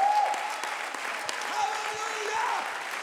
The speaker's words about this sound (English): You might as well go ahead and clap your hands and shout. No se va a mejorar más que eso. Levanta tus manos y aplaude a Dios.